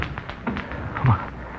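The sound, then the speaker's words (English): A door is opened: a few light taps and rattles of the handle and latch, then a soft thud as it swings, with no one speaking. “You'll have to open the door yourself, sir.”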